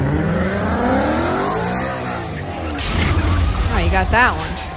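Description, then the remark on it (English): A car engine revs and whines, then a sudden loud crash bursts in, followed by sharp squealing tires. The whole sequence is loud, with muffled voices mixed underneath. “there's a lot of crashes, just like John Wick, man”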